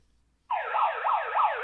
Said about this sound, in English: You know, okay, so it's got it's got a siren.